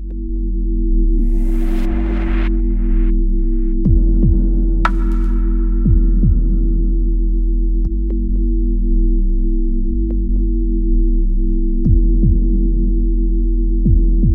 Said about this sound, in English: Electronic heartbeat, though, must be like one of the most overused fucking things. Totally. I mean, it does sound like the score to a non-existent movie at this point.